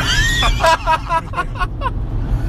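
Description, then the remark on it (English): Steady low road rumble fills the inside of a car cruising along the number one freeway, while high-pitched voices chatter and squeal in short bursts over the droning engine and tire noise. “We are on the number one freeway.”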